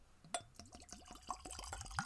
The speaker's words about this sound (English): All right. So I poured it into my happy little whiskey tasting glass.